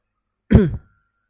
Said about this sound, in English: reading this make me have cough.